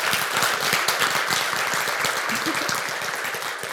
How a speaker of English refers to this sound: Well, ladies, let's give Marina another quick round of applause.